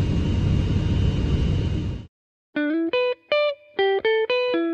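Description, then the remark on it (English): A steady roar of airplane cabin noise cuts off, then a quick run of about seven bright electronic call-button chime tones plays loudly as the call button is pressed again, stepping between pitches in a rapid, uneven rhythm. “I'm just going to press the call button again.”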